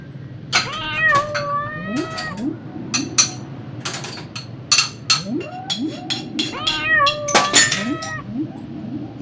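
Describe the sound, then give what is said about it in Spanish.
A cat meows several times in drawn-out, wavering cries, fairly loud, as it heads toward the kitchen in search of a treat, with sharp clinking and clattering sounds scattered between the calls. “El gatito se dirige hacia la cocina en busca de un agasajo.”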